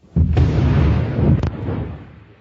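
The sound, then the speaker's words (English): An undersea mine explosion during the Second World War, mistakenly triggered by the powerful, pulsing voices of fish, hits with a sudden heavy boom, then rolls into a deep, sustained rumble with a couple of sharp cracks before slowly fading out. No one speaks. “That massive explosion occurred during the Second World War, when an undersea mine designed to detonate in response to the sound of an enemy ship propeller was mistakenly triggered by the powerful, pulsing voices of fish.”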